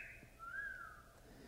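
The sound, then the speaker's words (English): A single wolf whistle from young men waiting at lamp-lit street corners in the wind, a clear whistled tone that swoops up and then slides back down, fairly soft against quiet background noise with no talking. “They make, in front of their looking glasses, haughty or come-hithering faces for the young men in the street outside at the lamp-lit leaning corners who wait in the all-at-once wind to wolve and whistle.”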